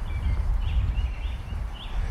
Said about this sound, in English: Carolina wren.